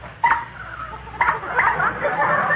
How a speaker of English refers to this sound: No, Smarty, it's the new sunken motor. And listen to this horn.